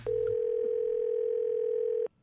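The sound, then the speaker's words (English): A telephone dial tone as a prank phone call is placed: one steady, unbroken mid-pitched hum holding at a constant loud level for about two seconds before it abruptly cuts off. No voices. “He's here with today's prank phone call.”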